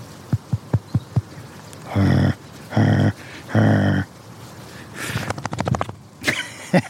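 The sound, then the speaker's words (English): A dog shakes its head outdoors in autumn, its ears flapping in a quick, rattling burst of slaps, after a few soft taps and three broad, rough noise bursts, with no talking. “I was hoping for a flappy reset, and I got one.”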